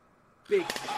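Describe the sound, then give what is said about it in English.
A wrestling steel chair shot sound effect: one loud metallic whack after a brief quiet moment, with a short clanging ring trailing off. No voices accompany it. “And we needed that chair shot.”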